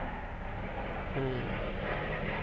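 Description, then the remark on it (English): A loud, steady low roar of an airplane flying overhead fills the whole stretch, broad and rumbling without letup, with a brief murmur of a voice partway through. “This fucking plane.”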